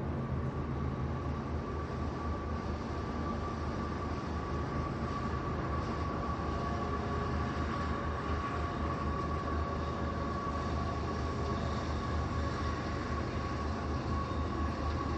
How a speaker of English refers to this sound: Now, this must be the same freight with engines in the middle as well.